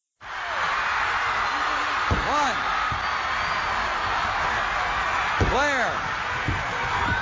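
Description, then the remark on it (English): A wrestling arena crowd roars steadily as Michael Hayes pulls Kerry Von Erich off Ric Flair, with rising and falling whoops and screams swelling twice and a few sharp thuds like bodies hitting the mat cutting through the din. “Let's get the crowd's reaction to what's going on here.”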